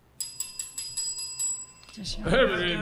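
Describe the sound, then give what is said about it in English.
A small hand bell is rung to call the children to dinner, about seven bright metallic strikes in quick succession with a shimmering ring, then stops as voices begin talking. “I shall ring the bell for the children.”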